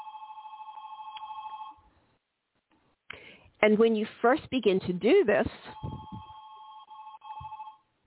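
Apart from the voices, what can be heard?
telephone ringing loudly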